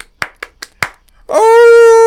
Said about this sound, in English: Oh, he's howling. There's someone's dogs out here in the woods.